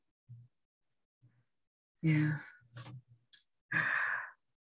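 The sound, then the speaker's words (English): A person yawns: a drawn-out, breathy exhale with a faint voiced groan, then a couple of shorter sighing breaths. No talking, just quiet murmurs between the breaths. “I don't know why I'm yawning so much.”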